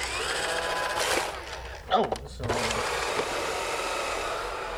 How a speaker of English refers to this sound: Yeah, but they're robotic vacuum cleaners. You press the clean button and you walk away and they clean the house.